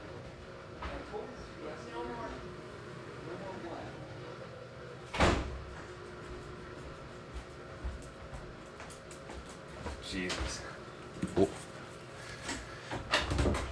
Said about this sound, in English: I don't know. She slammed the door at me.